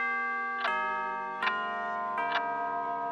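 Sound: grandfather clock chiming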